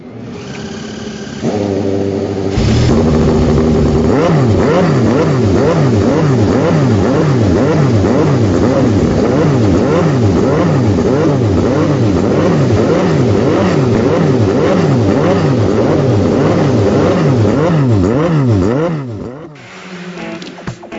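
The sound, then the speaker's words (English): Many powerful IndyCar Series race car engines at a street race fire up after a brief pause, on the command given by Miss America Kirsten Haglund, then rev loudly together in overlapping rising and falling whines, a dense, sustained roar lasting nearly twenty seconds before cutting off. “Ladies and gentlemen, start your engines.”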